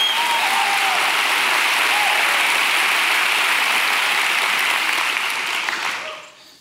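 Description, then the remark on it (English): A large crowd at a sermon claps steadily and loudly for several seconds at the preacher's call, a dense wash of applause that thins and fades out near the end. “Clap your hands like you believe I'm preaching.”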